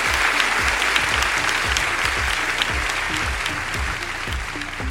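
An audience claps steadily for the guests at the end of an interview, a dense crackle of many hands with no break in the sound, sustained and fairly loud for the whole stretch.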